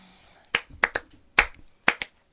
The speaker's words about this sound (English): So should we just do, like, clapping? Like, okay, I like that.